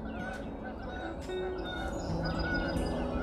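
Two geese honk overhead in flight, a couple of calls trading back and forth, fairly faint against a steady wash of outdoor background noise.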